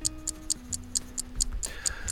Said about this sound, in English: We need the clock to start, like on the telly, but this is a pod version of the telly.